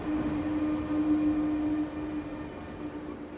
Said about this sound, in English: Oh, now we're coming into Bellinzona. The train will stop here for a few minutes.